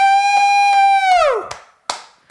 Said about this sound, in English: I'm standing up and applauding right now for LGBTQ plus AIAA.